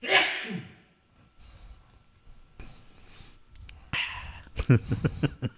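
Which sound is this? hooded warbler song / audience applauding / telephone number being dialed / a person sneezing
a person sneezing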